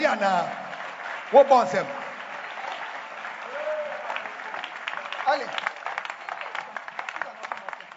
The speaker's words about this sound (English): Are you clapping your hands for Jesus, somebody?